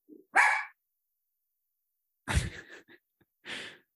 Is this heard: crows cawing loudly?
no